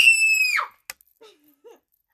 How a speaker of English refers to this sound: You want to hear my new scream? Want to hear my new scream?